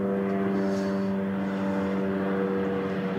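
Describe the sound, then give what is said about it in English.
A police helicopter flying by drones steadily, its engine and rotor producing a loud, continuous low hum with layered tonal harmonics and no noticeable change over the few seconds, with no voices. “Ghetto bird flying by, but yeah, we have them too here.”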